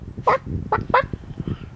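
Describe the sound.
A voice imitates a chicken to say sorry in chicken language: three short, nasal clucks in quick succession, fairly loud, followed by a brief quieter stretch of low murmuring.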